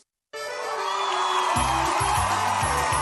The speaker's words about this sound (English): Hear the roar of the crowd, or is that the roar of your stomach?